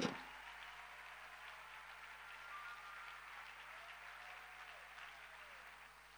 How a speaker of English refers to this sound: Somebody give the Lord a big, big clap, like God's about to.